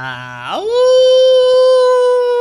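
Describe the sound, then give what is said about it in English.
A single wolf howl sound effect rises steeply from a low pitch and then holds a long, steady, clear note. It is loud, with no talking. “That's also a common thing in our intros is wolf sound effects.”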